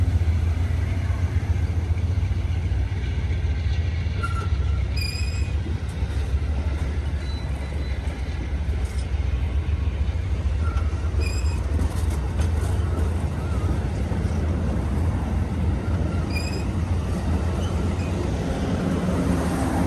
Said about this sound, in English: Well, we've just passed another Amtrak train going in the opposite direction. I'm not quite sure which of the Amtrak trains it is because I haven't got the full schedule with me.